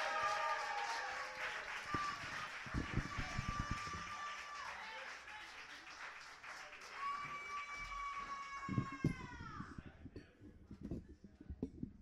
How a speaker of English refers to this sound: You can like that score, you don't have to like that score, but you have to clap for the poet regardless, so clap for the poet. And keep clapping